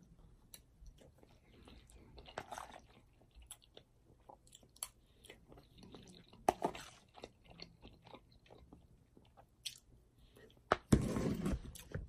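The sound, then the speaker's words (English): Wet chewing of goulash with soft squishy bites and a few crunchier moments, irregular mouth sounds over about twelve seconds, ending with a louder burst of chewing. “Goulash. I love goulash.”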